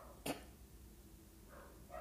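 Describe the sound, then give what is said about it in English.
A dog gives one sharp bark, then a couple of fainter, softer barks follow a moment later, over a quiet background with no talking. “These dogs are crazy.”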